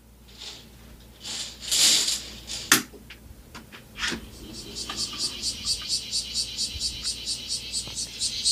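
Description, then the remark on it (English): A cicada's buzzing call pulses in a steady, rapid rhythm through the second half, high and moderately loud, after a few scattered knocks and rustles at the start. “That's the cicada, foreigner.”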